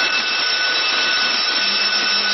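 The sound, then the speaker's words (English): A ship's alarm, sounded as the crew stand by to abandon ship, blares steadily, a loud, harsh, buzzing tone with a hissing edge that holds without a break for the whole stretch, with no voices over it. “Shall I sound the alarm? Yes.”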